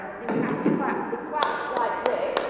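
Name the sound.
hands clapping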